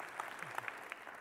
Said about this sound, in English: Yeah, that's great. You can applaud that.